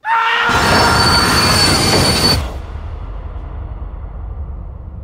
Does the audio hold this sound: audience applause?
no